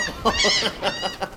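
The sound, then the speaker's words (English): A seagull squawks in a quick run of four or five harsh, nasal cries, loud, with no talking over it, then flies off. “Oh, look, he's flown off now.”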